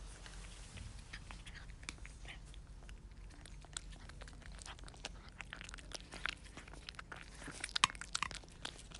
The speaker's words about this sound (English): And now the sound of Gonzo the cat eating. Dr. Gonzo eating.